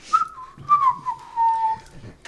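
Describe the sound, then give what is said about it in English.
A woman whistles a short, wavering melody while polishing plates, the clear tone sliding between a few pitches and holding a long note near the end, with faint background clatter underneath. “just goes back, polishing her plates and whistling.”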